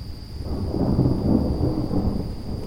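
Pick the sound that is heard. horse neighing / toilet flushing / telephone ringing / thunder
thunder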